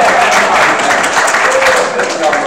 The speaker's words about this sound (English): Thank you. Come on, let's give a round of applause.